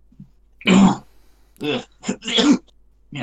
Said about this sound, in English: Yeah. No, definitely no Rona though. I'm coughing up blood.